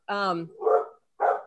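A dog barks three times in quick succession, fairly loud, at a man putting fertilizer on the lawn beyond the patio: a drawn-out, yelping first bark followed by two shorter, rougher ones with a brief pause between them.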